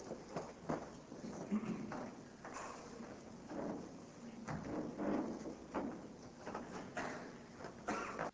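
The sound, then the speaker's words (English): Irregular clunks, knocks and rustling as a sinking office chair is adjusted and shifted around, several sharp mechanical thumps over steady handling noise, with no one talking. “hang on 1 second, this chair is ready to go down. I took a good chair”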